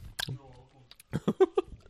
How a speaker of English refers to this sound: Oh, now we're just like fucking chewing taffy on the fucking vodka. This is a terrible idea.